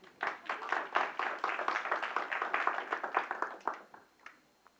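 A small audience claps for about four seconds, a dense patter of overlapping hand claps that holds steady, then thins out and fades to a few last scattered claps.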